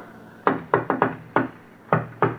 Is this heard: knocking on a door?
yes